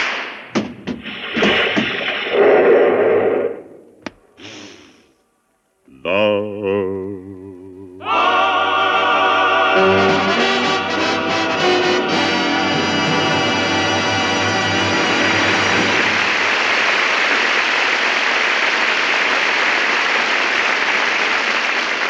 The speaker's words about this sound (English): that applause should tell you what a hit you've written. It was wonderful, darling.